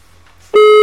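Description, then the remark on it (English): After a near-silent moment, a loud, steady telephone ringing tone from an outgoing call to a phone number cuts in abruptly and holds as a single unbroken electronic pitch through the end, with no voices. “It was ringing.”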